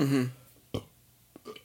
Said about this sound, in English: Had to burp right there. I'm having a White Claw and it's just so burpy, you know what I mean?